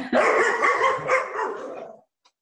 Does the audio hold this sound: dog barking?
yes